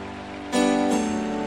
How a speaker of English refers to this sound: Clap your hands and pray now. Come against it.